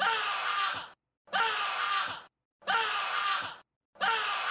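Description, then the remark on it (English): A man's angry scream, recorded while he was playing a game and used as a soundboard censor sound, repeats four times in quick succession, each loud, strained burst lasting close to a second and separated by short silences, like a looped clip. “It's just me screaming.”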